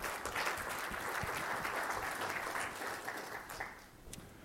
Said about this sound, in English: So big round of applause for our organizers.